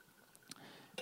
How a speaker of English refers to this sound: We've got a little drip action going.